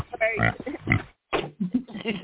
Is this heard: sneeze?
no